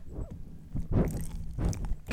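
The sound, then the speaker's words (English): A dog named Dixie gnawing on an object, with a few bursts of wet, crunchy chewing sounds in an irregular rhythm over low rustling, ending in a sharper scrape. “No, don't chew on it.”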